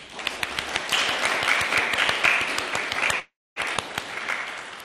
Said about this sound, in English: And perhaps we could have a little round of applause for our new members.